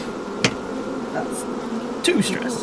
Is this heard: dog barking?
no